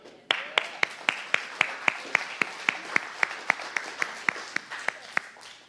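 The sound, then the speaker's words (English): An audience claps together in a steady, fast rhythm, about four sharp claps per second over a background wash of applause, sustained for around five seconds with no talking. “And if you are here today and you had a mom like that, you should clap it out because you're a walking miracle.”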